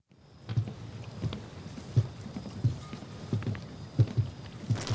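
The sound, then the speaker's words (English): Foley footsteps on a dock: a steady run of dull, low thuds, some landing in quick pairs like a heartbeat, over a faint airy background hiss with no voices. “Now, real quick, I want you to listen to the Foley art of how they're walking.”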